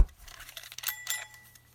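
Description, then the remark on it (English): Ratcheting clicks of a mechanical kitchen timer being wound back up and set to 20 minutes, with a couple of brief metallic bell pings ringing out partway through, and no voices. “So, actually, what I'm going to do is just wind this timer back up.”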